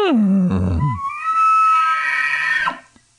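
A single elk bugle, loud: a deep, rough growl slides into a high, sustained whistling squeal with layered overtones, then breaks off abruptly into a brief grunt.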